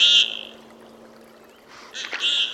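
Common goldeneye ducks giving courtship calls on the icy waters of Lake Champlain, Vermont: a short buzzy, nasal note, a pause, then a second harsher burst of calls over a faint steady hum and watery background.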